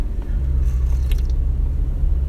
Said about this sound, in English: Sorry, I need to sip my very full coffee mug. It's kind of spilling.